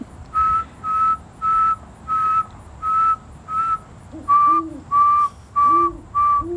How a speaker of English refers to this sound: And one of the staff told me early on that if you can whistle at a certain pitch, you can have a conversation with him. He will answer. But I don't always get the pitch right. But let me try.